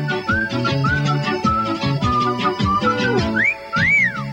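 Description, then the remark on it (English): A cheerful, bouncy Irish Spring advertising jingle is whistled over a lively instrumental backing, the melody rising and swooping in bright notes before ending on a couple of sliding phrases. “And you'll be whistling this happy tune.”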